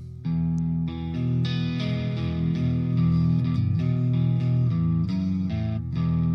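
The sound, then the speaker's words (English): A distorted electric guitar, played on the neck pickup through a DS1 distortion pedal, plays a warm, thick passage of sustained chords and notes, loud, with a fizzy sizzle on top and no voices. “I guess that's kind of one of the things with the DS1 here, but neck pickup.”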